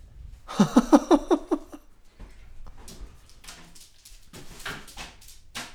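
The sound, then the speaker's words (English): A dog named Gorman runs outside and comes back: a brief burst of pulsing, whiny squeaks, then scuffling, clicks and knocks like paws and a door moving, with no talking. “No, it's just Gorman just out of his, all out of the sudden just ran outside. Oh no, he's back.”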